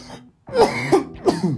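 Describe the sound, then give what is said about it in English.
A few rough coughs and throat-clearing bursts in quick succession, loud and raspy, with a brief pause before the main fit and no talking. “Can't start a show without a cough.”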